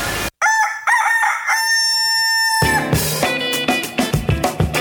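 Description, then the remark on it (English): A rooster crows loudly, one long harmonic cock-a-doodle-doo held for about two seconds, then upbeat music with drums kicks in right after. “I get the thing you just did with the it's a chicken nugget and then it's the chicken doing the chicken thing, the chicken scream.”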